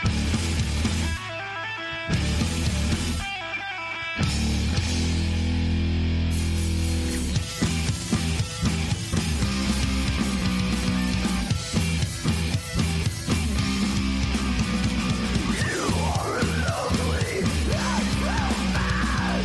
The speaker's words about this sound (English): We do have one song that we pulled from that episode.